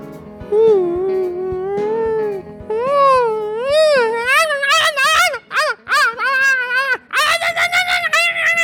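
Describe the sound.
A voice imitates coyotes, starting with a long wavering howl that rises and dips, then breaking into quick yips and warbling high-pitched cries before a final sustained yodeling wail.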